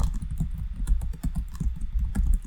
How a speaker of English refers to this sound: No, I'm deleting whatever it is you're typing.